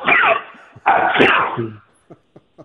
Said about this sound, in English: excuse me, I'm going to have to sneeze. Hang on.